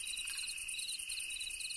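Steady, high-pitched cricket chirping pulses continuously through the whole moment, a dense insect trill at moderate volume with no voices, like a quiet night outdoors.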